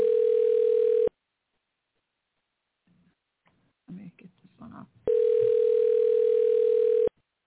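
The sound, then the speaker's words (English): A telephone rings twice, each a loud, steady electronic burst of about two seconds, with a short stretch of people talking quietly in the gap between the rings. “It's ringing.”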